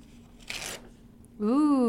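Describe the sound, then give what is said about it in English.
A single quick rip of paper, a short crisp tearing burst lasting a fraction of a second, followed after a brief pause by a person's drawn-out vocal exclamation. “Yeah, let's get a nice audio rip.”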